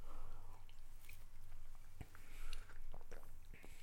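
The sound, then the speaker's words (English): Quiet mouth sounds of someone sipping a drink with plum and lychee flavor notes, with small wet clicks and a soft slurp, and no talking. “I need another sip now.”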